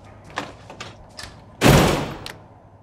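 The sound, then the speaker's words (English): Knocking on a door: a few light, evenly spaced raps, then a much louder heavy thud like a pounding fist or slam, and one last faint knock. No one speaks. “You want to be out there playing with all them hoes and you keep your ass out there, but stop knocking on my goddamn door.”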